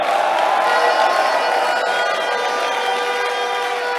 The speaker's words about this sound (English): Give the Lord a shout and a clap of praise.